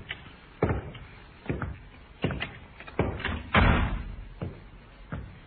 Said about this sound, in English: The sergeant tried the door. Not locked, sir.